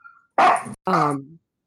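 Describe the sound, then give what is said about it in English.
A dog barks at another dog, two loud, sharp barks in quick succession, the second one trailing into a brief whine; no one speaks. “Bella barking at Champion.”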